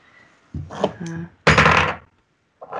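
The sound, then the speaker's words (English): Dice clatter and tumble across a hard tabletop, rolled for a stealth check in a tabletop role-playing game, a quick rattling burst lasting about half a second, preceded by softer knocks and a brief murmur of voice. “Oh, that was quite the dice.”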